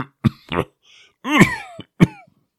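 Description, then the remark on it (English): A person coughs forcefully several times: two quick coughs, a longer harsh, strained hack with a voiced rasp, then one more sharp cough, with brief pauses in between. “Steve began to cough, little small coughs. Excuse me, he said. Then a little bit more forceful cough.”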